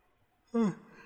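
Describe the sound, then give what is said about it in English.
A single voiced yawn, loud and brief, with a falling pitch that trails off into quiet breath after a near-silent start. “Why am I yawning?”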